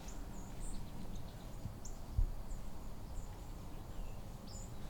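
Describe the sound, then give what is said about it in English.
Thin, high seep calls of white-throated sparrows, a scattering of brief faint notes at irregular intervals, coming from a few spots over a steady low outdoor rumble, with no one talking. “So most of those seep sounds are white-throated sparrows.”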